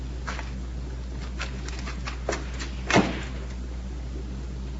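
A car door clunks shut with a short, solid thud, preceded by faint clicks and rustles of the door being opened and handled, as a car pulled up at the side of a road at night picks up a hitchhiker, all over a low steady engine rumble; no one speaks.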